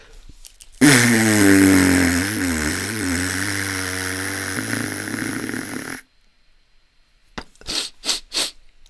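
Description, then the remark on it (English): A long, loud nose blow into a tissue lasting about five seconds, with a wavering, honking rasp, followed after a short pause by three or four quick sniffs. “I get one and blow my nose loudly for about 2 minutes.”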